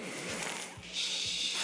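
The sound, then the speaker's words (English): A voice imitates Darth Vader's heavy mechanical breathing, forcing air through clenched teeth in a steady, raspy hiss that shifts to a sharper, higher exhale partway through, with faint low thumps pulsing underneath. “That's not Darth Vader. That's just dying.”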